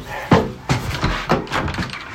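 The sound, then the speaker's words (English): A front door at Erskine Court being opened to let arriving guests in: a sharp clunk of the latch followed by a couple more knocks and rattles as it swings, with no one speaking. “Coming to answer the door with me.”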